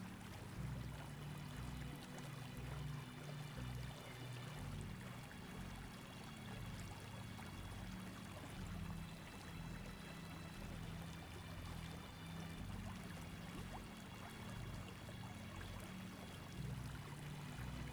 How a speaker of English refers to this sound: Taking in the beautiful energy of the waterfall. And now we will take a few silent moments focusing on the breath and the energy of the waterfall.